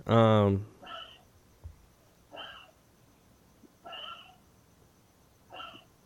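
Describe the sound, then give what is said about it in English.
A 14-year-old dog gives one loud, harsh, throaty burst, then four shorter wheezy snorting coughs, evenly spaced about a second and a half apart, with nothing else happening in between. “Now I hear something else in the background.”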